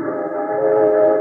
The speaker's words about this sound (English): With those trains, how can you concentrate on your wax modeling, Scala? Even better with the trains, Mr. Craig. I am filled with the wild rhythm.